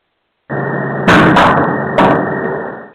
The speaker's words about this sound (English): I just heard a loud banging from over here. I'm sure that was caught on tape there. Or recording, rather. I'm not saying anything, but it sounded kind of like something hit the top of this outbarn thing we have over here. It's got a metal roof.